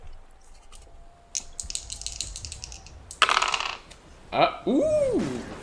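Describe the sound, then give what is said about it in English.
Dice clatter and tumble across a hard tabletop in a few quick rattling bursts, fairly loud, ending with a short voiced exclamation; dice rolled for a game, coming up a 13. “That's a 13 on the dice of that.”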